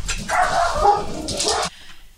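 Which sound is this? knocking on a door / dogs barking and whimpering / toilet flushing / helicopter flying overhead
dogs barking and whimpering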